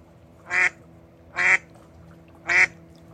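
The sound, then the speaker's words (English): A female duck quacks three times at a steady, unhurried pace as she comes closer, each call short, loud, nasal and alarmed-sounding, standing out clearly against a quiet background with no talking. “I wish I understood duck language.”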